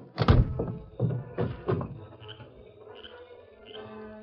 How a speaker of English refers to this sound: Buckled on his guns. And a moment later, slammed the door behind him.